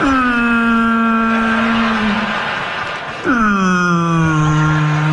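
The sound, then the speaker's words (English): Two long, mournful whale moans, each starting higher and sliding slowly downward in pitch with rich harmonic overtones, the second beginning after a brief dip midway; loud, with no talking. “Whales always kind of sound depressed, don't they?”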